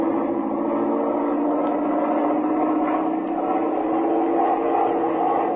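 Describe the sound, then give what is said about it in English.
An airplane engine is opened up during a flying lesson after a stall, droning steadily at full power, a dense, buzzing roar with a humming low pitch that stays even and loud throughout, with no voices. “All right, open up the engine.”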